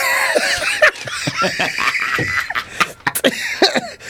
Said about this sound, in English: that's brought a cough out.